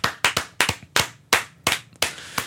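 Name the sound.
slow hand clapping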